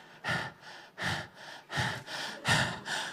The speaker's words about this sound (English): Heavy breathing.